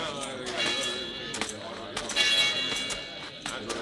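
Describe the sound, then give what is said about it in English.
A bell clangs repeatedly in an uneven rhythm, rung to gather everyone in town, its ringing tones lingering and overlapping, with a crowd of voices murmuring underneath. “All right, Rafe. You can stop ringing that bell.”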